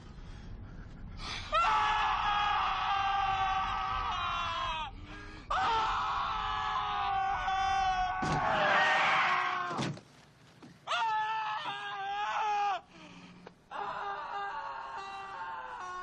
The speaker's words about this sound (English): I'm not going to put the whole clip here because it would literally be 2.5 minutes of screaming at the top of their lungs.